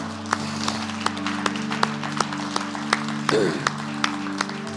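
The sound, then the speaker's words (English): Steady, rhythmic clapping in unison, sharp claps landing at an even beat over a sustained low droning tone, moderately loud throughout. “Now you can clap.”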